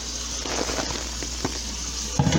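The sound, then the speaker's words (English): Running cold tap water splashes steadily over raw turkey meat as it is rinsed, a continuous hiss broken by a few soft knocks and wet thumps as the meat is handled beneath the stream. “Put it on cold water, and you rinse the this meat.”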